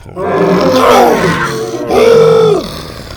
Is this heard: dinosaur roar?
yes